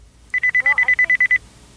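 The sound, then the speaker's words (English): A phone's warning beep: a quick, evenly spaced run of about ten short, high-pitched electronic bleeps lasting around a second, fairly loud, with a faint voice briefly underneath. “Yeah, I'm not sure if my phone is running out of power.”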